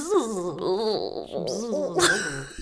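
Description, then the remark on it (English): A voice imitates an elderly grandmother bee with a quavering, wobbling hum that slides up and down in pitch, moan-like and steady in loudness, ending with a brief breathy rasp. “We've got good impressions of grandma bees.”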